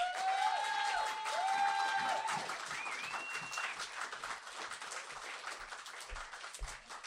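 An audience breaks into steady applause, a dense wash of clapping that holds for several seconds, with a few brief tonal whoops or whistles early on before the clapping slowly thins.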